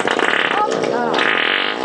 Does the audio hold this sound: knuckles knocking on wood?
no